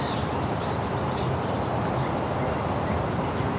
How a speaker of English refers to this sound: Some barn swallows.